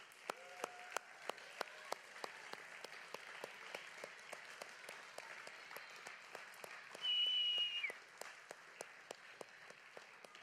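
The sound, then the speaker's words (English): An audience applauds the mothers present on Mother's Day, steadily for about ten seconds, a dense patter of many hands clapping at a fairly even level, with a brief high whistle-like tone rising over it partway through. “So why don't we just give you moms, you incredible, awesome moms, a big round of applause.”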